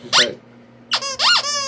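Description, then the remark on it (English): A voice imitates the high, rubbery squeaking of a bag being bitten: a short squeal, a pause, then two longer squeaks that slide up and down in pitch, fairly loud. “They just want to bite on it and make the squeaky sound.”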